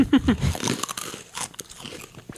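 A loud, close-up crunchy bite into hard food, followed by a couple of seconds of crackling, brittle chewing right against the microphone.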